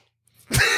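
A single sneeze: a faint quick intake of breath, then a sudden loud, harsh burst of air that stays strong to the end, with no talking.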